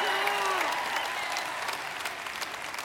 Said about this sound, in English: See, I knew I love this church. And if you're one of the people who's not clapping right now, I have another picture to show you that is the patent of the toilet paper roll, and it clearly shows the toilet paper goes over, not under.